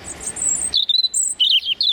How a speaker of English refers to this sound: This is what the European robin sounds like.